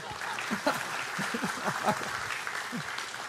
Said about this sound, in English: I mean, I don't get one applause. You get multiple. It's humbling.